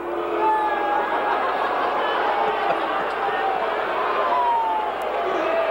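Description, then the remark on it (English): A large stadium crowd roars in a steady, dense wash of booing and jeering at Alex Spanos, then owner of the Chargers, as he is introduced at halftime of the 49ers–Chargers game during the retirement of Dan Fouts' number 14. Sustained low voices and scattered higher calls fill the whole stretch without a break. “Yes, that was the late Alex Spanos, who was then the owner of the Chargers, booed as he was introduced.”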